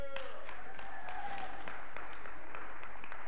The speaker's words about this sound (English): That is officially my highest rep count. You all clap for me, I clap for you. I wouldn't have been able to do that without you.